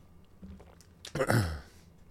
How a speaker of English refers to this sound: I'll try to quit clearing my throat and the mic